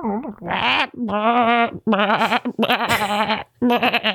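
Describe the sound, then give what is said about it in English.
A person imitates a goat, letting out several wavering, nasal bleats in quick succession, loud, with short breaks between each quavering cry. “That's definitely a goat. That's not a panda.”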